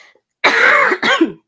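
human body sound, coughing fit

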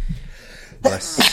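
human body sound, sneeze

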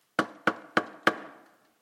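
impact, knocking on a door

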